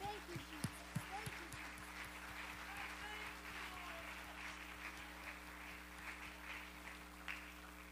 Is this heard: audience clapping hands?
yes